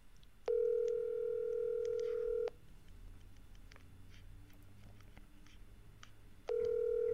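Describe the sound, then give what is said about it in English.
A phone rings out on a call to the speaker's mother: a steady electronic ring tone lasting about two seconds, a pause of several seconds, then the ring starts again, with faint background noise between. “I'm just calling my mom.”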